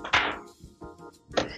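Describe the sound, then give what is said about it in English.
Dice rolled for a stealth check in a tabletop role-playing game tumble across a tabletop: a sharp clatter at the start, a few soft ticks as they settle, then a second bright clack. No one speaks. “Okay, roll a stealth check first. Okay. Okay. Be with me, dice.”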